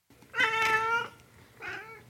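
A cat meows twice, fairly loud: a longer, drawn-out meow followed after a short pause by a briefer, softer one. No one speaks.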